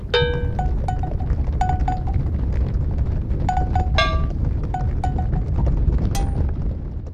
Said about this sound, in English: To make sure, we bring you this sound of a herd of cows moving through the studio.